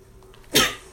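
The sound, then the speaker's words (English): A single sudden sneeze bursts out, loud and explosive, then quickly fades with no talking around it. “I sneezed and I killed a zombie at the same time.”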